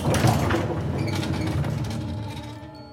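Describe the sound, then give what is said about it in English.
An elevator door slides along its track with a steady mechanical rumble and rattle lasting a few seconds, fairly loud, then fades as it comes to rest. “I step off the elevator and hold the door for the guest.”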